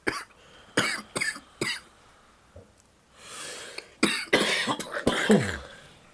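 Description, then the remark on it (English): A series of harsh coughs after taking a hit comes in two fits, separated by a long breathy inhale and a short pause; the second fit is louder and rougher, with hacking, raspy coughs. “Put our coughs on a loop.”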